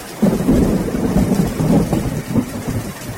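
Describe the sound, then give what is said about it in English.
Steady rain drums on a roof, a dense continuous patter with deep rumbling underneath, fairly loud, with no voices. “Unfortunately, we don't hear that sweet sound of rain on the roof enough.”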